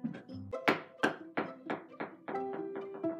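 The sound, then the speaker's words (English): A Christmas ornament is dropped repeatedly against a door handle, giving a series of about eight or nine sharp clacking knocks in an uneven rhythm, each with a brief ringing, metallic tone. “Well, I have a Christmas ornament on my door handle, and when I lift it up and I drop it, it makes this sound.”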